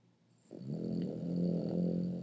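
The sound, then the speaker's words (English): A dog snores, a low rumbling, congested breath that swells in after a brief quiet start and drones steadily on. No one speaks. “Let me give you a bit more snoring dog for the people who listen to this, just for that part.”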